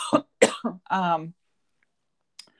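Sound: cough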